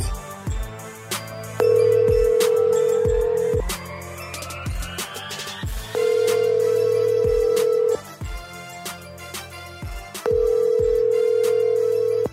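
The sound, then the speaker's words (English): Three long, steady ringback tones repeat at even intervals, the sound of a call ringing on the line unanswered, with a rhythmic music beat running underneath throughout. “I can't believe this son of a bitch ain't answering the phone.”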